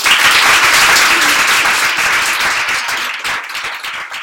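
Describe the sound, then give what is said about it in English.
A live audience at Stripe's offices in London applauds guest Eileen Burbidge in a steady, loud burst of dense clapping that fades slightly toward the end, with individual claps becoming more distinct. “So can you all join me in a round of applause for Eileen?”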